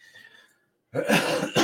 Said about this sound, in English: Excuse me. You have to excuse my coughing. I've been ill for like a week and I cannot shake it.